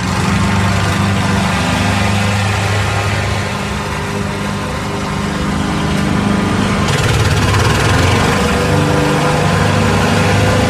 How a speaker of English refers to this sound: What is that? A leaf blower? Oh, I'm so sorry. Pass. So close, though. Close. The same kind of annoyance. That was a lawnmower. Close. You were in the yard. Yeah. Wrong tool, though.